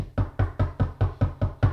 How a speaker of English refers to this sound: And then 2 weeks later, someone knocks on your door.